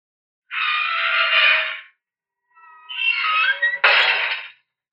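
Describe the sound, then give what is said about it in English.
A gate creaks in two long, squealing strains, the second wavering in pitch and ending with a sharp clank as it shuts. There is no talking. “A gate.”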